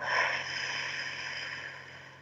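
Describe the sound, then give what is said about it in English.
A single long, steady breath pushed out through pursed lips, as if through a straw, during a guided breathing exercise, a soft airy hiss lasting a couple of seconds and slowly tapering off, with no talking and a faint low hum underneath. “Out through your mouth, like through a straw.”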